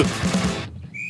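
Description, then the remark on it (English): A short burst of loud, dense punk music gives way to a shrill, steady whistle tone that rises and sounds out clearly near the end. “Big fan of whistles.”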